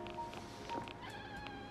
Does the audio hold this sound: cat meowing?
yes